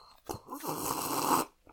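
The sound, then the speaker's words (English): An attempt to slurp a drink: a brief mouth click, then about a second of airy, hissing sucking noise with little liquid sound, loud and alone with no talking. “I couldn't get a very good slurp on that one.”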